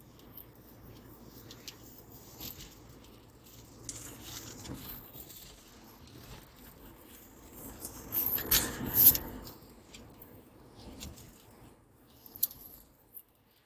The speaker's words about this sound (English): Raining, but it's not raining, like it's drizzling